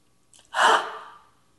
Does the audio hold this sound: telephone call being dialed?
no